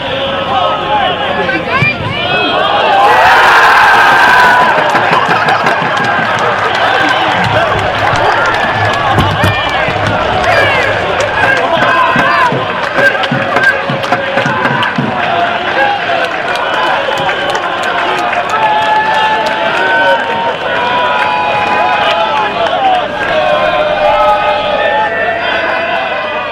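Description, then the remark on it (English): A large football crowd roars continuously after a goal volleyed from 30 to 35 yards into the top corner, a dense wall of cheering and shouting that swells early on and stays loud and sustained throughout, with no single voice standing out. “I've cut out the audio from the crowd and then I spoke to him after the game.”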